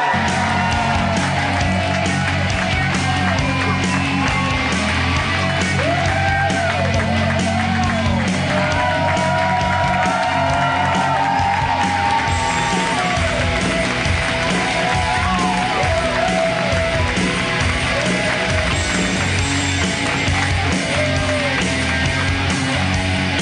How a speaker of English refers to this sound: He might have got bigger applause than the mayor.